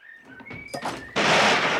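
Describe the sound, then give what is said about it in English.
A few thin, high whistling tones give way to a sudden loud crash as a wooden door breaks in half and falls to the ground, its heavy rumbling noise filling the rest of the moment. “Crash! The door fell to the ground, broken in half.”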